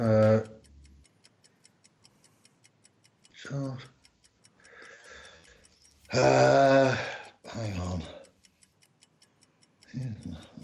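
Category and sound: sound effect, quiz countdown clock ticking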